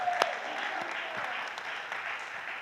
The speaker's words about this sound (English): and he shreds, so let's give him a round of applause. He's amazing.